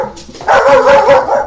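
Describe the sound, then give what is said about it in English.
A dog barks loudly, a short burst of strained, tonal barks running together over about a second, with no voices around it. “And a dog.”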